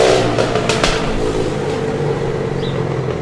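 A motorcycle engine revs loudly, a steady throaty roar with a few sharp bursts near the start, filling the whole moment with no voices.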